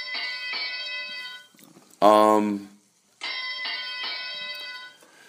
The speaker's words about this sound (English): Oh, playing the bell like that?